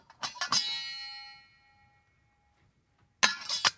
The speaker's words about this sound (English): It's not a musical instrument. It's a cookie jar, a glass cookie jar with a metal top.